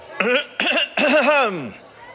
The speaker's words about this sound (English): I'd like to make a toast, he said, rising to his feet and clearing his throat obnoxiously.